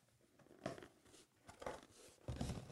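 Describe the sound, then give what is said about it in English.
Wrapping paper being torn open on a plain, nondescript box: several quick, crinkly rips in bursts, fairly loud, with no talking. “Open. Is it more wrapping paper? It's the leftover wrapping paper.”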